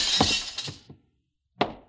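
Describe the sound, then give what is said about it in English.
A Ming porcelain bowl, used as a goldfish bowl, smashes with a loud, bright crash, shards clattering and tinkling for a moment before a brief silence, then one more sharp crack of breakage. “Well, if you have no goldfish, you don't need the bowl.”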